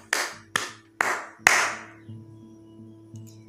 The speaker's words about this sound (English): Slow claps, brother.